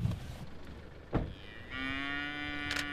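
On a farm in the afternoon, a single cow lets out a long, drawn-out, steady moo in the second half. A brief knock is heard just before, over faint outdoor background noise with no talking.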